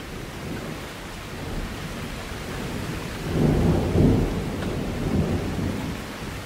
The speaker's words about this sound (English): I'm not used to hearing thunder. Living in Seattle, you get used to the rain, sure. But there were not many thunderstorms. On the East Coast, these storms can be intense. So yeah, I'm sitting here on my patio, soaking it in.